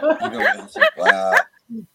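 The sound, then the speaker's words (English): A person imitates a dog with a rapid series of yelping, bark-like vocal bursts, loud, ending with a short low grunt after a brief pause. “I'm gonna be the dog.”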